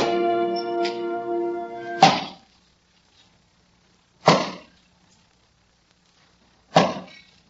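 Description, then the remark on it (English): Wood being chopped with an axe in hot sun: three heavy, evenly spaced whacks about two seconds apart, each a sharp crack that dies away quickly, following a sustained droning tone at the start. “you oughtn't to have something on your head chopping wood in this hot sun.”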